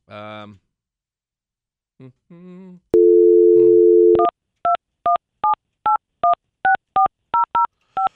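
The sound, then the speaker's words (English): A couple of brief vocal sounds, then a steady telephone dial tone followed by a quick, evenly spaced run of about a dozen touch-tone dialing beeps as a man phones his wife, clear. “I'm going to get my wife on the phone for this one.”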